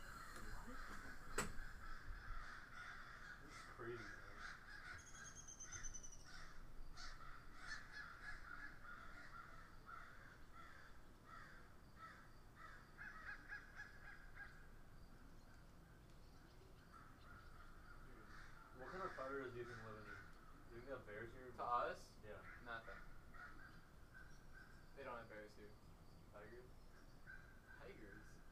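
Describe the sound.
A busy chorus of outdoor birdsong from about fifty birds, with repeated harsh crow-like caws and chirps, many birds calling at once over steady background noise, with occasional faint voices.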